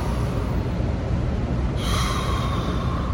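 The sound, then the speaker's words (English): A deep breath drawn in and then let out, a steady, airy rush of breathing with no one speaking. “Breathe a little into them. And exhale out.”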